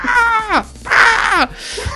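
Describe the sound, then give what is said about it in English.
A voice imitates an eagle's cry with two loud screeches, each sliding downward in pitch, separated by a short pause. “Like, I'm an eagle, I'll get your eye out.”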